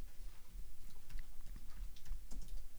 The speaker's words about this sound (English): Is Yellow Pages still a thing? Why am I typing up Yellow Pages?